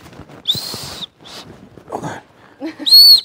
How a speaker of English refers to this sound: Well, not only that, but you've got some other really nice safety pieces in this backpack. So you've got your handy dandy whistle.